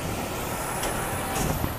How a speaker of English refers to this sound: Okay, now that that truck has passed me and you've been warned, we're gonna get into it.